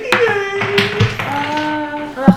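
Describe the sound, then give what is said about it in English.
A few sharp, scattered clicks and taps of dice tumbling onto a tabletop as players roll initiative, over a steady pitched hum of voices in the background. “Go ahead, everybody roll initiative.”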